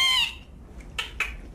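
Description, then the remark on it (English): A whale, heard in audio from a documentary, gives a brief, high harmonic call, followed by a few sharp, separate clicking bursts in an irregular rhythm at moderate loudness. No one speaks. “my doorbell would leave out the audio from the documentary other than just the whale sounds”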